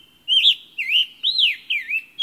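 A songbird chirps in a quick series of five bright, whistled notes, each sliding up and down, clear with no talking.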